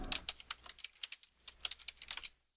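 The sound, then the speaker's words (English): Rapid, uneven clicking of keys on a loud computer keyboard, a steady burst of sharp taps over a couple of seconds, clear with no voices. “I have a loud keyboard, I know.”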